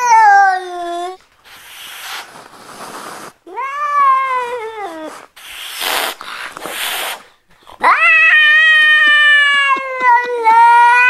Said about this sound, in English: That sounds like a baby. It does. It's not a baby. Amazing. It's a cat. Yeah, that's a cat.